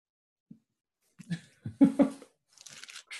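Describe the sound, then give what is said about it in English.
A dog's toy gets tugged away mid-chew: crinkly crunching and scuffling in a few short irregular bursts, with some faint breathy noise between them and no talking. “Let me just take this away from the dog.”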